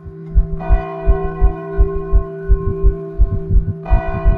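Church bells ring steadily in the morning to announce a mass, their sustained metallic tones humming over a rhythmic low thudding of strikes, fairly loud with no voices present.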